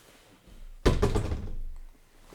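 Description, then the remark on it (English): A single sudden thunk of a capped plastic water bottle being knocked over onto a hard surface, fairly loud, with a brief rattling tail as it settles, then quiet. “I just knocked over my water there, but it's okay. It was capped.”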